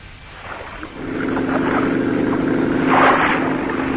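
A motorboat's engine drones steadily as Mr. Hayes's boat moves across the sea, going after someone, with water rushing and splashing around it, the engine swelling louder partway through and holding strong.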